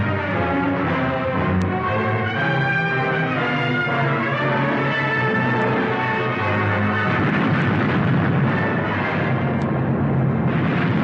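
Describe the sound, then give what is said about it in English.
A film trailer: loud, dramatic orchestral music plays, then gives way to a sustained, roaring explosive rumble with a couple of sharp cracks like gunfire, dense with no speech. “And as you can hear with that trailer, there is a lot of guns and explosions in the trailer.”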